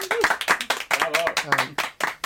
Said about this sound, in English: Please give him a round of applause.